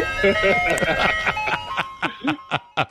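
A tinny, tinkling Good Humor ice cream truck jingle plays at moderate volume, its melody fading into a series of short, rhythmic vocal-like bursts toward the end.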